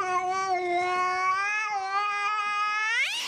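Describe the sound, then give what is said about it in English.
A cat lets out one long, drawn-out meow, a steady wailing yowl that rises sharply in pitch at the very end. It is clear, with no talking. “Calm down there, little kitty.”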